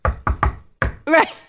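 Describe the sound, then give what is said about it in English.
A patterned secret knock on a door: three quick raps, a brief pause, then one final knock, fairly loud, followed by a short voiced sound from a person. “That would be like if the secret knock on the door is...”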